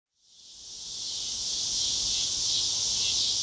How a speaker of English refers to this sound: Summer cicadas drone in a withered Washington County forest, complaining, it seems, about this relentless extreme heat wave on the Arkansas Ozarks, in place for nearly 7 weeks now.